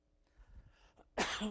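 A single loud cough from a speaker with a little itch in the throat bursts out near the end, preceded by a second or so of soft, low rustling and shuffling.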